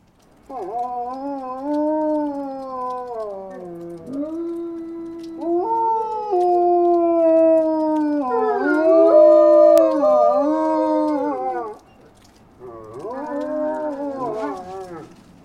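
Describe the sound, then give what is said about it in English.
Two real wolves, Eeknik and Oktok, howl together in long, overlapping wavering tones that rise and fall, sustained for several seconds with a brief pause before a final joint howl. Loud, with no talking. Recorded for the soundtrack of the stop-motion film Nowhere's Wolf. “Here are Eeknik and Oktok howling together.”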